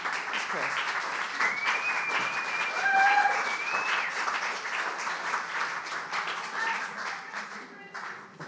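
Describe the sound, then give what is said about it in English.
An audience applauds a speaker who has just been introduced, in a steady, dense round of clapping that holds at an even loudness throughout, with a few faint whistles rising above the noise. “To give him a round of applause.”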